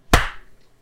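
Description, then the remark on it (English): One sharp, loud hand clap, swatting a fungus gnat, rings out on its own and decays quickly, followed by a faint soft rustle, with no talking. “Clap and always clap and slide.”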